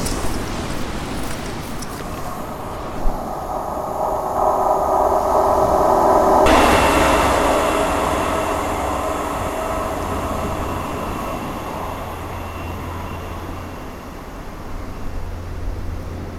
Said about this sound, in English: Two trains at once.